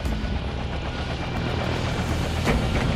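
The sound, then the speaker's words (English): A helicopter sets down lightly in the center of a helipad, its rotor and engine making a loud, steady roar with a faint rhythmic chop. No one speaks. “Set down light in the center of the helipad. Several other desert camo helicopters were tied down around us.”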